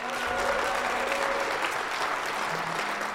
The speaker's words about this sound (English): Round of applause for all of those folks, please.